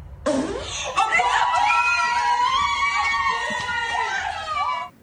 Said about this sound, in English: if you have the article up, do you wanna play it so the audience can hear the fart?